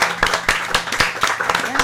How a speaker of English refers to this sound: So a big round of applause to your local comic shop person.